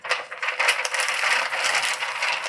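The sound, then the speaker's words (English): A sheet of paper bearing a written love letter rustles and crinkles for a couple of seconds, a steady, dry crackling with small irregular bursts and no one speaking. “You can hear it rustling.”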